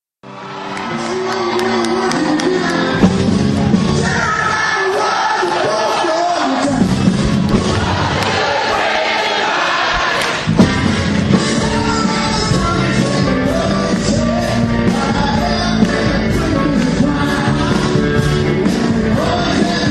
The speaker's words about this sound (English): and the crowd sang along with them. Check it out.